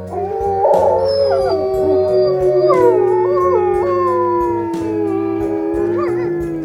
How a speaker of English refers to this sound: And the wolves.